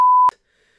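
A steady mid-pitched censor bleep covering a company's name, a single flat tone lasting about a third of a second, starting and stopping abruptly with clicks, followed by near silence.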